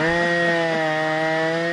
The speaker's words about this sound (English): That's actually a chainsaw. That's the chainsaw.